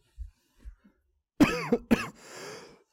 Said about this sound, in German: Oh, fuck. Jedes Mal, wenn ich huste, explodiert mein Kopf ein bisschen.